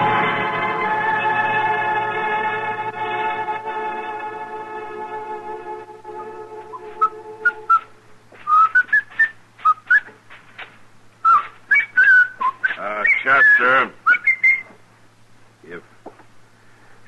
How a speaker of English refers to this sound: Whistling, would you mind doing it outside? Yes, sir, Mr. Dillon. I just thought it might kind of cheer you up, son. Mm-hmm. My land, you've been cross as a bear lately. Even Miss Kitty says so. I figured this might help.